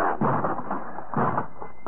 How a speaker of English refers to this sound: Guess I'll have to force this door.